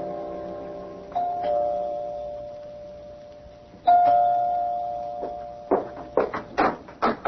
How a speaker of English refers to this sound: You can ring the doorbell. One thing about doorbells, they don't give off busy signals.